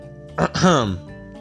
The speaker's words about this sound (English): Gonna clear my throat for this one. Been like rambling on about how good this movie's gonna be. Like a little bit too long and my throat's dry. Clear my throat real quick.